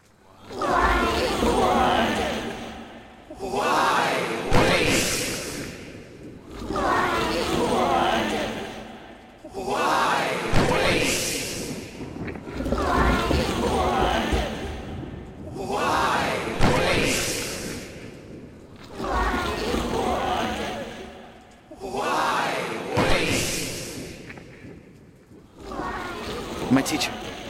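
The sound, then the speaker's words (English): A crowd of souls of the miserly and prodigal in the abyss screams and strains in repeated surges as they roll enormous weights, each cry swelling loudly for a few seconds and then breaking off, with harsh, effortful cries layered together and a low rumbling beneath. “And from both sides of this circle, you can hear their screams straining their chests as they roll these enormous weights.”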